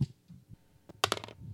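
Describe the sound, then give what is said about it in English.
Dice are rolled across a hard surface to pick which film to watch next: a single sharp click, then a rapid burst of four or five bright, rattling knocks that quickly die away, over a faint low background hum. “So, Jacob, my friend, roll that dice.”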